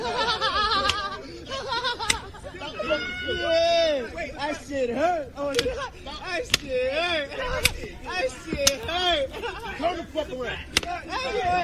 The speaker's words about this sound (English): But it says, thief gets sentenced to whipping from the block court. That's O Block. And for those of you, this is slavery in reverse. They're going to whip this white guy with a belt.